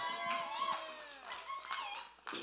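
An audience applauds, with scattered claps mixed into loud, high, sliding cheers and whoops that rise and fall throughout, ending with a short burst of noise.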